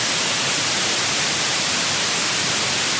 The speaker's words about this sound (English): Now, you certainly heard white noise in the hiss of an untuned radio.